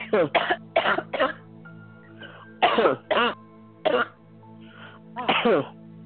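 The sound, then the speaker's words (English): A person coughs repeatedly on request during a prayer against deafness, short sharp bursts arriving in pairs and singles with brief pauses between them, over a faint steady background hum. “And just cough for me.”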